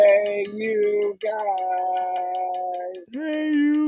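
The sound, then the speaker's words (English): A school bell signal sounds as three sustained electronic chime tones, each lasting about a second, steady and fairly loud, with the final tone noticeably lower in pitch. “This is like the late bell in school when we used to go to school.”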